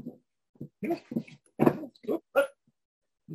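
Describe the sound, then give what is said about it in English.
A small dog whimpers and yips in a quick series of short, high-pitched cries, fairly loud, with brief pauses between them. “All right, here's the doggy.”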